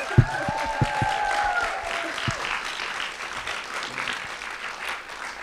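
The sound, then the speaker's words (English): An audience applauds students who are about to share their pieces on stage, steadily for several seconds, a dense wash of clapping with a few whoops and cheers rising near the start before settling into even, sustained applause. “So can we please have a thunderous round of applause?”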